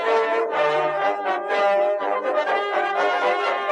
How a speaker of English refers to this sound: Planes fly overhead as the boys in red at Coca-Cola successfully complete a bombing run, destroying several Pepsi battleships.